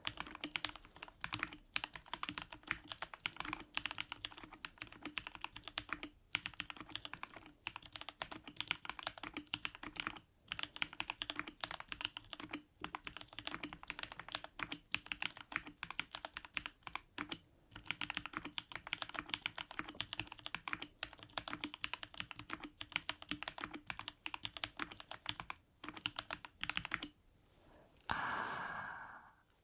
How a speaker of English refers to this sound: So let's do some slow typing with this. Okay. Oh, it sounds so nice.